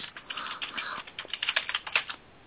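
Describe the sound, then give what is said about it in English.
Rapid clatter of typing on a computer keyboard while looking something up on Wikipedia, a steady stream of quick key clicks with a few sharper taps, fairly quiet, with no voices. “If you can hear the typing there, it's because I'm typing.”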